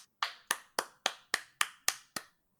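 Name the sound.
hand clapping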